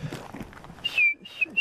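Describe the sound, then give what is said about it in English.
A person whistles an imitation of a bird call, one high, slightly falling note followed by a shorter second whistle, fairly loud after a stretch of quiet background shuffling. “Yeah, well, you have to have wet lips to do that whistle.”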